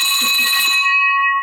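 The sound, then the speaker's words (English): A victory bell is struck once in celebration, its single bright, clear metallic tone ringing out loudly, sustaining and slowly fading with a long shimmering ring, heard alone without any talking. “Ladies and gentlemen, here we go. The victory bell for Peter.”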